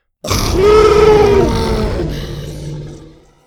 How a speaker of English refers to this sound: He watched the little dinosaur lower its menacing head and let out a spit-riddling roar from its fanged mouth.